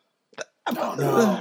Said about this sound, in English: Oh no, I can't laugh at everything without going in a coughing fit. Uh-oh.